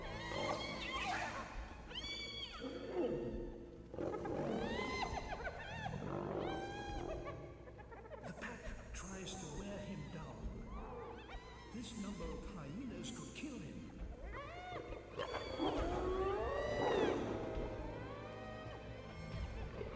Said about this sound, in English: The hyenas can take out a lion. It's impossible to fight them all at once.